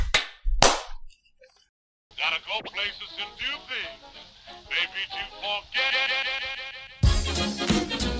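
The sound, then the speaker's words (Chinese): Two sharp, loud hand claps about half a second apart, made to sync a recording just as it starts, then a short silent gap before louder, busier sound begins. “开录， 来拍个手，三二一，拍手。”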